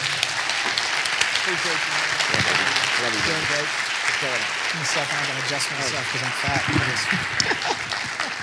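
A church audience at City Life claps steadily and loudly for several seconds to welcome a pastor, with scattered cheers and whoops rising over the dense wash of applause.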